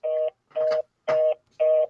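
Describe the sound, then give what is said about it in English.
Four evenly spaced electronic telephone beeps after a call drops, each a steady buzzy tone about a quarter second long, repeating in a regular rhythm like a disconnected-call signal, fairly loud with no voices. “I think his phone died or something, because now it's giving me something else.”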